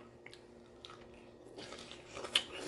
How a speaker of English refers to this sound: Jesus, that's a big piece of pineapple. I know. I'm about to devour it.